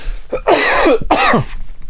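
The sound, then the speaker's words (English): Two loud, harsh coughs, one right after the other, each a raspy burst with a short pause between and no talking. “Pardon me, I'm going to cough.”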